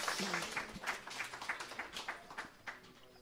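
An audience claps steadily for a few seconds, a dense patter of overlapping hand claps at a fairly soft, even level, with no one speaking over it.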